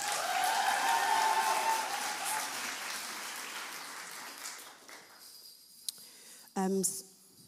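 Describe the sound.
An audience breaks into a round of applause, a dense patter of clapping that steadily fades over about five seconds, followed by a quiet pause and a short burst of voice.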